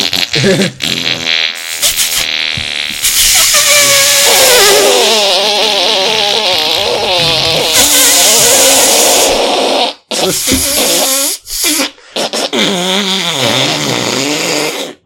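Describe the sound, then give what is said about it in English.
Someone loudly blows drawn-out raspberry fart noises, a sputtering, wavering run lasting about ten seconds, then a few shorter bursts after brief pauses. “Can anyone do a good fart noise?”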